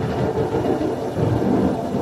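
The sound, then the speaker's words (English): A deep, continuous rumble of thunder outside rolls steadily for a couple of seconds, fairly loud and dense, with a faint rain-like hiss above it and no voices. “You know when it's thundering out, and well, the only reason I like that air on because it's taking the humidity out of the room.”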